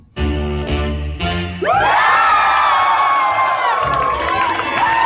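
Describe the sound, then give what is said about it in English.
A brief burst of music gives way to a loud live audience erupting in sustained cheering, with many overlapping whoops and yells continuing to the end. “Cheer like you took a shirt off.”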